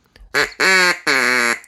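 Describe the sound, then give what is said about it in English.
Three loud, buzzy quacks blown on a duck call, a short one followed by two longer drawn-out honks in quick succession, with no talking. “This is a duck call.”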